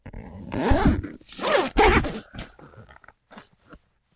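A zipper on a laptop case is pulled in several quick, raspy strokes, with short pauses between pulls and a few softer tugs near the end.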